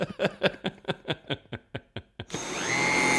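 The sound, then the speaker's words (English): A quick series of rhythmic mechanical knocks slows down, then a Hoover vacuum cleaner switches on, its motor whining up into a loud, steady roar. “Yes, that is a Hoover. Well done. Or a vacuum cleaner, if it's not made by Hoover.”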